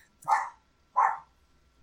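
Dogs barking in short, sharp bursts, three barks spaced about two-thirds of a second apart, fairly loud with no talking over them.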